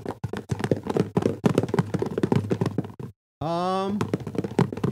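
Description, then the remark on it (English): Something loose knocks and rattles around inside a Christmas gift box being shaken to guess its contents, a quick, uneven burst of clattering thuds, then a short pause before a voice briefly speaks over more rattling. “And each week I've been shaking it, trying to figure out what's in here.”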